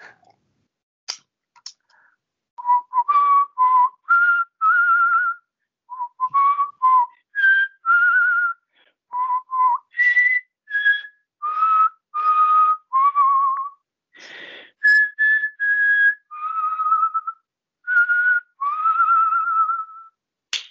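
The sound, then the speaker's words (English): A person whistles the Happy Birthday tune alone, a clear melody of short, bright notes in phrases with brief pauses, steady and fairly loud throughout. “And I could also do happy birthday in case you can't think of one.”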